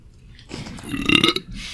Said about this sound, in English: Who burped? You did. You just didn't look away from the microphone